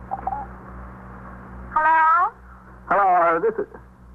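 A telephone rings twice down the line, each ring a short, buzzy burst heard through a thin, band-limited earpiece, with steady low hum and faint background noise between them.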